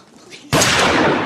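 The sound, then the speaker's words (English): After a quiet, muffled half-second, a loud blast of gunfire erupts abruptly and carries on as a dense, roaring wash of noise until the end, overpowering; a man shooting people in a dining room. “The dining room that minutes earlier was filled with laughter is now eerily silent, except for gunfire and the rantings of a madman.”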